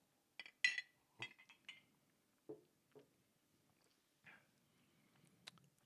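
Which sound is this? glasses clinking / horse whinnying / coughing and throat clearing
glasses clinking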